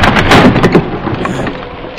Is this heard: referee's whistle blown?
no